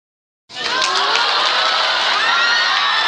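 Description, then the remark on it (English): A crowd at a trivia game bursts into loud cheering after half a second of silence, with high-pitched whoops and shouts layered over a steady roar that holds at full volume to the end. “The crowd liked that one.”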